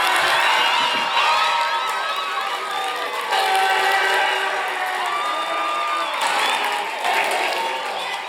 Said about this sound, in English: I want you to make as much noise. Make them feel embarrassed. See if you can get any of them to blush. Make as much noise, just shouting and clapping for them, letting them know how much you appreciate. On the count of three. 1, 2, 3, go.